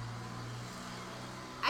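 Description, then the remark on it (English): A car's engine hums in a low, steady drone as it pulls away, taking people back to their hotel, with a brief louder burst of noise right at the end. “That's the car taking them away now.”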